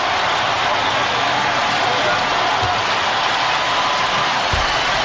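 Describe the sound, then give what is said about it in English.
A huge stadium crowd cheers after a World Series win, with fireworks going off and confetti, in a continuous, dense roar that holds steady and loud for the whole stretch, with no pauses or individual voices standing out. “Well, the crowd's saying it all.”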